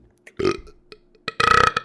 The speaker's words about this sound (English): I can burp on command. I can still probably do it, but it would probably hurt.